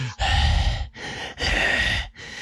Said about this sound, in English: Okay, I'm sorry, okay? I'm a heavy breather. I am always congested. I can't control it. It is not my fucking fault. I can't breathe out of my nose.